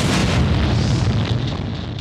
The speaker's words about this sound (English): And we see a magnificent explosion. Wow. With the oil-covered planet being set on fire by the big bada-boom. Boom.